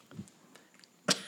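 A soft, low throat-clearing rumble, followed a moment later by a single sharp, loud cough, with quiet background and no talking.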